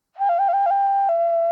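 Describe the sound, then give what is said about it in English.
A single loud, sustained whistle blast from a new acorn-shaped whistle, warbling slightly in pitch before settling into a steady shrill tone, with no talking. “In fact, to salute you, I whistle with my new acorn whistle that I got.”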